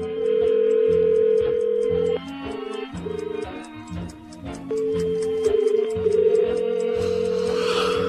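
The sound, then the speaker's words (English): A telephone ringing tone drones on and on with no answer, a call to a public phone box late at night, set against steady low tones and a regular ticking pulse, with no voices. “Oh, it's tiring phoning phone boxes late into the night.”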